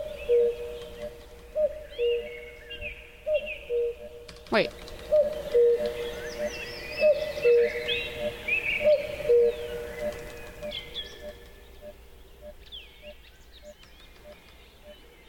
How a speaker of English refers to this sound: Sonar loop mode. See that? Hear the beep, beep, beep on the right-hand side?